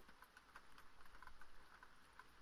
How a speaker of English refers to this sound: Just listen. Listen to the rain. It's so soothing. So relaxing. It's such a complex sound, too. It's easy to hear if you close your eyes.